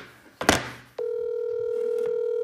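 A loud thump and clatter, then the steady electronic ringing tone of an outgoing phone call starts and holds continuously through the end, with a faint click partway through. No one speaks.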